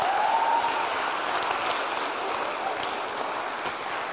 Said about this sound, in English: I think we should give her a round of applause.